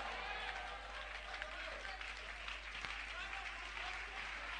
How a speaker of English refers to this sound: Somebody, as you are clapping, say, I receive it.